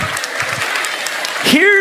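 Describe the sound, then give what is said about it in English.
An audience claps in a dense, steady patter of many hands for under two seconds, and a voice starts speaking over the applause near the end. “Okay, you can clap if you want.”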